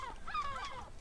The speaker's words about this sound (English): Seagulls. Yeah, like a seagull on a hot chip.